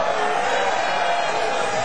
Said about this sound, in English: So I want us to do about 3 seconds of shouting right now. One. Come on. One, two, three. Glory.